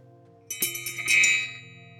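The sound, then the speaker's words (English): A small bell is rung to call in the direction of air, with a few quick strikes, its bright metallic tone swelling and then fading away over a faint, steady background hum. “Go ahead and ring our bell to call in the direction of air.”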